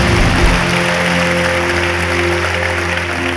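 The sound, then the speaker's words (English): An audience claps steadily, a dense, loud wash of many hands that holds at an even level for about three seconds, with a low hum beneath and no talking. “Come on, clap right now.”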